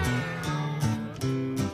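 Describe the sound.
Several voices imitate a cat, letting out a quick run of about four drawn-out, sliding meows, loud, one after another with barely a pause between them.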